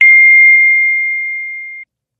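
A single sustained electronic beep of a phone call dropping as the caller's phone died holds one steady pitch for nearly two seconds and fades slightly before cutting off abruptly, with nothing else around it.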